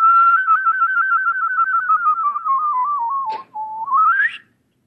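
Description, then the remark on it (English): A clear human whistle trills rapidly between two neighbouring pitches, drifting slowly lower for about four seconds, with a brief click near the end before a quick upward glide. “I definitely picked up this trill technique like this.”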